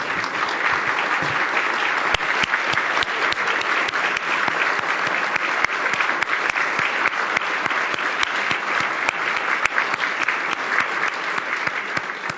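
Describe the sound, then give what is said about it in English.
A room full of people claps steadily for the standing MPPs and election candidates, a dense wash of hand claps that stays loud and even from start to finish with no one speaking over it. “So if I could just ask everybody to stand up in the room who's an MPP or is putting their name on a ballot in the next election, and let's give them a round of applause for their public service.”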